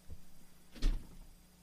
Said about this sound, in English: Fucking, sorry, I got scared. The fucking door slammed up there. Scared the shit out of me.